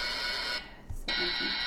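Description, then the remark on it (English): A quiz buzzer sound from a phone app, used for buzzing in to answer questions, blares twice: two loud, harsh electronic buzzes separated by a brief pause, with no talking. “So when you know, if you know the answer to the question, you buzz in, and then I've got a buzzer on this phone too, so you. One of you guys can use the iPad, one can use the phone.”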